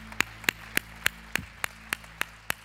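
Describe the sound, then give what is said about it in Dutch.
An audience at a church service claps together in a steady, even beat to give God a hand. About nine sharp, crisp claps come over a few seconds, with a low hum underneath and no one speaking. “Laten we de Heer een applaus geven.”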